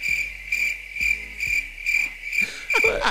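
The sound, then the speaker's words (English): Crickets chirp in a steady, repeating pulse, with bright trills arriving about twice a second, fairly loud, with no voices over them. “Didn't hit as hard as those international crickets.”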